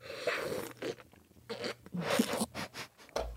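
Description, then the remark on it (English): A person slurping coffee, a series of short, wet, hissy bursts in an uneven rhythm with brief pauses between them, and no talking. “Was that a slurp?”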